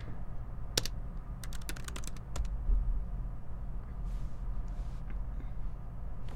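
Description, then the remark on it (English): A brief flurry of computer keyboard typing, a dozen or so sharp clicks in an irregular rhythm, over a steady low background hum that continues after the keys stop. “Oh, my keyboard's off.”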